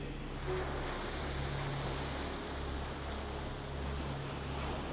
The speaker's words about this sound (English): The gentle sound created by the waves feels like divine music that is so soothing that it makes your heart feel light.